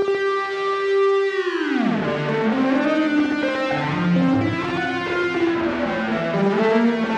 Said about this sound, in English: Yeah, so this one. Flange is doing a lot of work there.